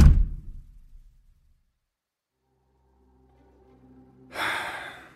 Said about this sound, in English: I managed to grab a hold of the kitchen door and slam it shut.